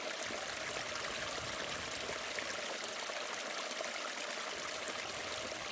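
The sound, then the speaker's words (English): A little brook babbles steadily, a continuous bright rush and trickle of flowing water with no pauses, heard on its own without any voices. “There's a little brook thing just here. Now that is a lovely sound.”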